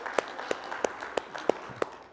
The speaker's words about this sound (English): Let's give Him a hand clap of praise together one more time, if you wouldn't mind, please.